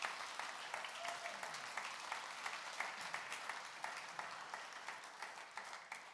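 A crowd applauds steadily for about six seconds, a dense patter of many hands clapping at an even level without fading, with a faint voice briefly audible underneath.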